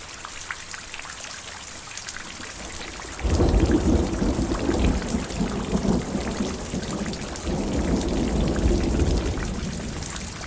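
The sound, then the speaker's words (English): Steady rain patters down, then a deep rumble of thunder rolls in around three seconds and swells again later, heavy beneath the continuous hiss of the downpour. “Rain falling and the sound of thunder are two of the more archetypical natural sounds that affect almost everyone on Earth.”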